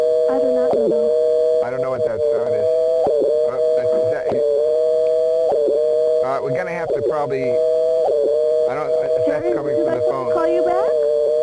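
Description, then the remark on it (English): A steady, droning telephone line tone after a dropped call hums without a break for the whole stretch, fairly loud, while muffled voices talk intermittently over it. “Okay, we something went wrong with the phone down there”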